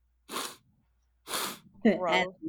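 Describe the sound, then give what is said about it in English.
Two short, forceful nasal blasts of someone with allergies blowing their nose or sniffing hard, a second apart, followed by a brief voiced vocal sound. “But it's not my fault that I got a blow my nose. I have allergies.”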